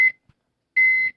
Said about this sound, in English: He's setting the smoke alarm off already. He hasn't even done anything yet. We haven't even started and the fire alarm's going off.